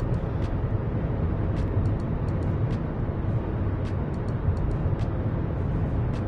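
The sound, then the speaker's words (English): A steady, low rumble of road and engine noise from a car commuting along a major road in moving traffic, with faint light ticks and clicks scattered over the constant drone. No one speaks. “We're moving along pretty good now. We are no longer, as the title says, stuck in a traffic jam.”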